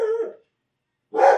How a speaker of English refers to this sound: There is no cat, Dougie. Why are you barking at?